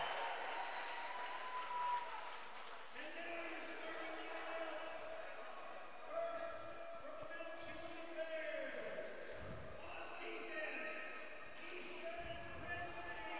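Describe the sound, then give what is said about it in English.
A basketball crowd cheers steadily with scattered applause as the Ravenwood team, wearing white, is introduced in the starting lineups against Mount Juliet. A sustained roar of voices continues while a public address announcer speaks over it and a few sharp bounces or slaps cut through. “Ravenwood wearing the white tonight as they get a big cheer.”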